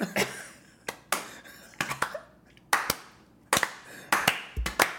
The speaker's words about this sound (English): That's like a drum circle. It's like we have to clap until we get synchronized with each other.